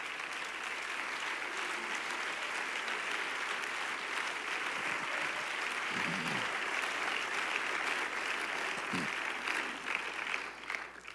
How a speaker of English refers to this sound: Woo! Let's clap here just a second.